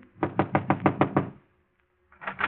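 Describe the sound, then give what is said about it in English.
A quick series of about seven firm knocks on a wooden office door marked manager at the Tripoli Cafe, evenly spaced, then a short pause before a few more raps. “He hesitates a moment, glances at the two men beside him, and knocks.”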